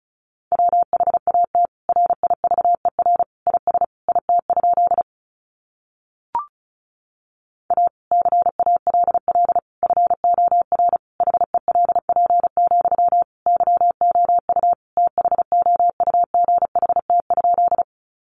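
Fast Morse code sent at 35 words per minute, spelling out sentences made from the top 300 words, as a steady mid-pitched beep keyed on and off in quick dots and dashes, with a pause and a brief click partway through.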